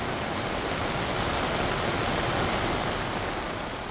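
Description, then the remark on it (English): A dense, steady roar of heavy rain and rushing floodwater during a once-in-a-century rainstorm flooding the streets of Hung Hom, Hong Kong, loud and holding at an even level throughout with no voices or breaks. “Hong Kong flooded by ‘once-in-a-century’ rainstorm”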